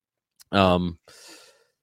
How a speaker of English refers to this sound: I'm sorry, I had a cough there.